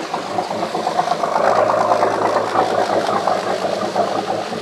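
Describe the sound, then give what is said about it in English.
A noisy boat engine rumbles steadily as the boat departs a marina, heading out to sea for diving. A mid-pitched mechanical drone with a slight rattle, it holds a fairly constant loudness throughout, with no talking. “And there goes the Sea Scout. You can hear it.”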